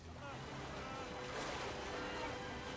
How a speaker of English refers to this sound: Look at the energy of this river.